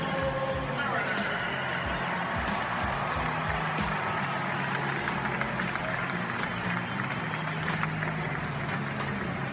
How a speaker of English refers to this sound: And this one's from 2018. It's now T-Mobile Park, but it was Safeco Field. It's where the Mariners play. It is an awesome ballpark, and it was just listen to the crowd as the Mariners are being introduced.